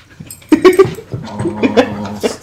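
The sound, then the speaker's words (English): Dogs whimper and let out short, high yips in quick, uneven bursts, fairly loud, with tonal whines stretching between the sharper cries. No one speaks. “These are his brother's dogs. I found them outside. But they're good doggos.”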